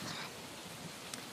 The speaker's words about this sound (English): Rain/thunder ambiance.